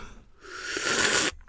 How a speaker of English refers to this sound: That was me slurping my tea.